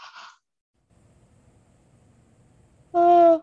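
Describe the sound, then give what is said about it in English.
A person yawns during a breathing and energy-clearing meditation: a long, quiet, drawn-out inhale followed by a short, loud, voiced groan at the end, after a brief faint sound at the very start. “Sorry for yawning, it's clearing when I yawn.”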